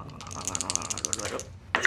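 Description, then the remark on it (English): Dice rolled during a game of Call of Cthulhu rattle and roll in a quick, dense series of small plastic clicks for over a second, then a brief pause and a sharper final clatter as they settle. No one speaks. “I'll do another set of dice.”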